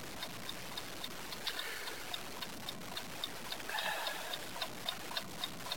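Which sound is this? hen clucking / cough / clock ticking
clock ticking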